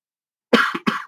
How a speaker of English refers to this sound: See, I knew there was a cough coming. Sorry about that.